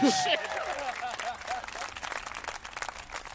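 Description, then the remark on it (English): A crowd applauds with steady, dense clapping for a few seconds, mixed with voices calling out and cheering over the top, loudest at the start. “But round of applause.”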